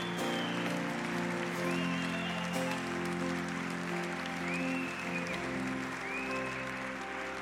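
A crowd applauds steadily and loudly for several seconds after a baptism. The clapping is dense and continuous, with sustained musical tones held underneath.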